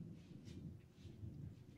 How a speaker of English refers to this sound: Oh my lord, that thunder.